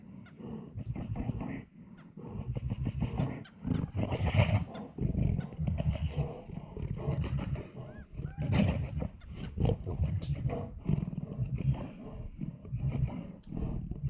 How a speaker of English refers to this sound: This is a bear fight. Look at her breathing. It sounds like a fucking dinosaur of Jurassic Park.